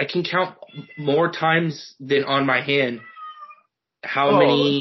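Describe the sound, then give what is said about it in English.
A pet cat lets out a short, faint meow in a brief pause, with a man talking before and after. “That's my cat this time.”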